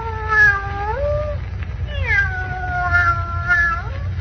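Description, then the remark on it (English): A cat lets out two long, drawn-out meows, the second longer and wavering like a yowl, over a low steady rumble with no one talking. “The cat's opening its mouth. Maybe it's going to talk.”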